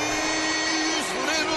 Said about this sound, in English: This is the crowd. He's smashing the helmet.